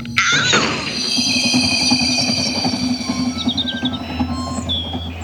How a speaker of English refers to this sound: Hey, kid, you best get up before you get run over. Train's due in.